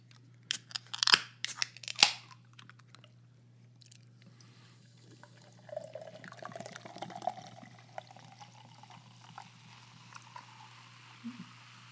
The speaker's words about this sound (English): We instead opted for the newest version of Kitty Paw, which is made by Seventh Son. It is a hard seltzer. And we'll talk more about it in a second, but we'll open it up first.